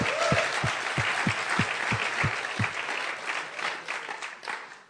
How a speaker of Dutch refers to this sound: Laten we haar een geweldig applaus geven.